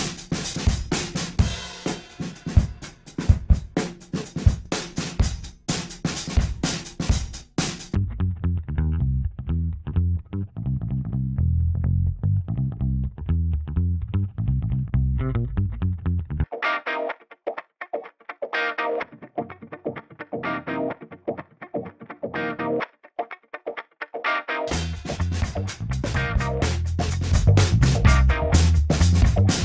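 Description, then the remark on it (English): Instrumental music tracks play as the Console One channel-strip plugin is disabled and then enabled on them one by one, with abrupt shifts in tone as layers change: a full, bright mix, then a darker bass-heavy section, then a thin midrange-only passage before the full sound returns. “So you can hear what a huge difference Console One makes to all of my tracks here if I disable and then enable them one by one.”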